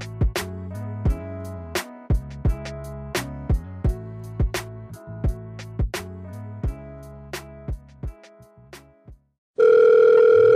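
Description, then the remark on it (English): A telephone calling the Medicine Remix hotline rings in a steady, repeating pattern of bright tonal pulses for about nine seconds, then the answering machine's loud, continuous steady beep tone sounds at the end. No one speaks. “Thank you for calling the Medicine Remix hotline. Please leave message at the sound of the beep.”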